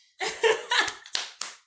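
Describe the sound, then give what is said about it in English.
A few uneven hand claps ring out, sharp and fairly loud, mixed in with a burst of laughter before the last separate claps. “I'm clapping like a seal.”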